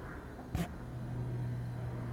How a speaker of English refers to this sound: We'll go into the fridge. Yeah, I mean, it's picking up fridge noise, but not RF noise. So it definitely seems to be sorted.